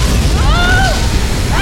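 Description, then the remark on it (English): A loud, deep blast of the rock cavern wall of Leviathan City exploding 800 feet above Weller Street, a heavy rumbling roar that holds steady throughout, with thin screeching tones sliding up and down above it. “The cavern wall of Leviathan City exploded 800 feet above Weller Street.”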